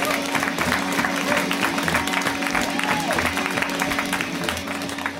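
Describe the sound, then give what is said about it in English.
A comedy show audience applauds steadily for several seconds as comedian Joe Zimmerman is introduced: a dense, even patter of many hands clapping at a constant loudness, with a low hum running underneath and a few faint voices mixed in. “And please give it up now for Joe Zimmerman!”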